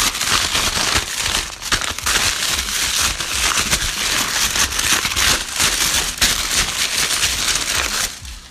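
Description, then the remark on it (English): Continuous rustling, crinkling and ripping of wrapping paper as a large Christmas present box is unwrapped, loud and steady for several seconds with dense crackly bursts and no voices. “Oh, man, that's a lot of wrapping paper.”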